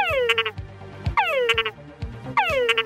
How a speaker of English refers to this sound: He recorded the calls of the male Tungura frog.